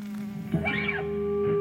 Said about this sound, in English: Why do bees buzz? Keep watching and you'll find out.